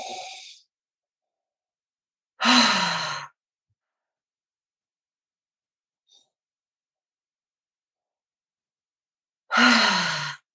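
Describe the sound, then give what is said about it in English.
Slow, deep breaths drawn into the tummy and fully let out, each a loud, airy rush lasting under a second, spaced by long silent pauses, like a controlled breathing exercise with sigh-like exhales. No talking. “So I really make sure I'm getting a lot into my tummy and I express it all out.”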